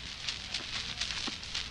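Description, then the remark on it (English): Someone lights a pipe: a series of soft, breathy puffs roughly every half second, with faint crackling, over a steady low hiss. No one speaks. “Well, just let me get my pipe properly lighted.”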